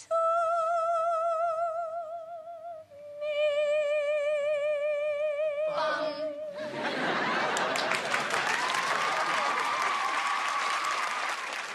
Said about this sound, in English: So there we go. Everybody claps at the one good singer they had as Scott Wolf works hard to not ruin the entire scene.